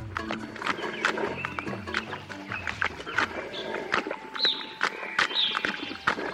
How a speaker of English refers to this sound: We're listening to the sounds of a moose feeding.